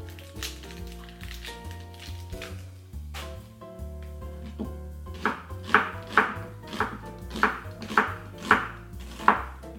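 A knife dices an onion on a cutting board in steady, crisp chops, about nine sharp taps in even rhythm, over background music that plays alone for the first few seconds.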